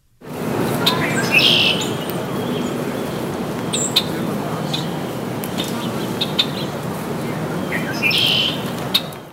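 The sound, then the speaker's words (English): A red-winged blackbird sings its bright, buzzy trill twice, near the start and again near the end, over a steady wash of outdoor ambience with faint chirps from other birds. “There it is, and I couldn't have told you, except I have it on this piece of paper in front of me, that that's the red-winged blackbird.”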